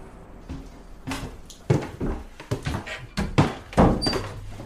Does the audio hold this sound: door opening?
yes